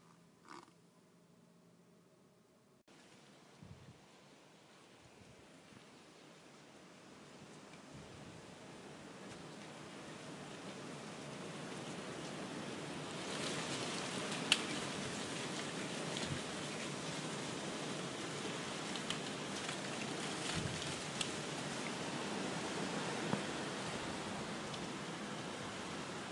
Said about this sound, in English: I'm currently recording this on a very windy night in Cornwall, as you may be able to hear. It makes for very peaceful sounds, as this is in the early hours